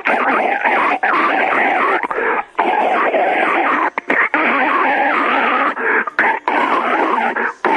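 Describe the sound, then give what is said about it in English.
A long, loud, wet gargling sound of a person gargling to clear mucus from the throat after throat surgery; it bubbles and gurgles almost continuously for several seconds, broken by a few brief pauses, with a thin, band-limited quality like audio over a telephone line. “After they eat my throat surgery, I have to gargle every few minutes to clear the mucus and the pus and the wax and all the mungo out of my fucking throaty-woaty.”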